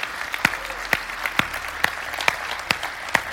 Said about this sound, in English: Isn't it so great to see people get baptized? Come on, I think we should give these guys another round of applause.